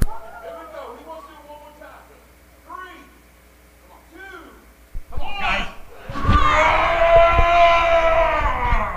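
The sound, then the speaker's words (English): A group of children roar like lions, a loud, rough, sustained burst of voices that swells and holds for several seconds after a few quieter, higher vocal sounds. “Got your roar out for a little bit.”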